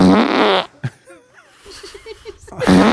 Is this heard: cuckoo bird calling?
no